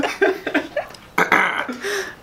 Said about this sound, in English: You got a good burp coming? Maybe. If it does, it's not going to be pretty. Are burps ever pretty?